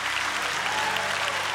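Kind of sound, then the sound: crowd, audience clapping hands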